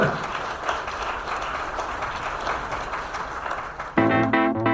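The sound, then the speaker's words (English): A crowd applauds in a dense, steady wash of clapping for about four seconds, then a louder tonal musical passage abruptly takes over. “Give him a mighty big round of applause.”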